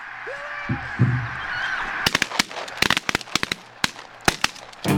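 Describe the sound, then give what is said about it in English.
A goose honks loudly for about two seconds, then a rapid, irregular volley of sharp shotgun blasts cracks out, roughly a dozen punchy reports fired at a single bird, with the honking dropping away. “That was me trying to shoot at one bird.”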